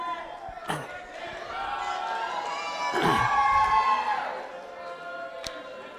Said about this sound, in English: You know, there's a reason they're cheering.